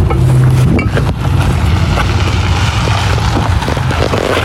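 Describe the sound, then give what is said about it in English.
A motorcycle rides around a liquor store parking lot, its engine rumbling steadily in a loud, low drone that holds constant throughout without pausing, mixed with some gusty wind noise. “I wish I was so cool that I could ride around the liquor store parking lot in a motorcycle.”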